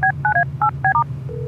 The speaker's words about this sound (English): While you drive, I'll dial her up on the Larrymobile's Larry phone.